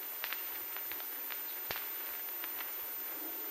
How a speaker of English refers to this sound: Oh, Aunt Nora, it's really raining out. I thought it was going to.